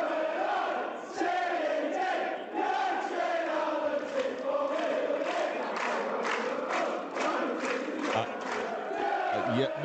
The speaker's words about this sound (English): No. Come on. We got a tepid applause.